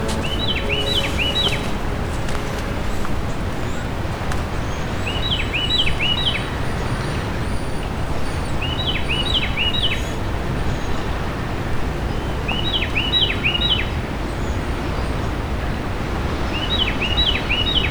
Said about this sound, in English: Carolina Wren.